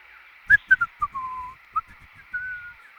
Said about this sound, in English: Whistling to himself, Dr. Rex happily hopped over to the first obstacle in the course.